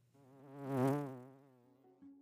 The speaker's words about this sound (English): And there will be bees.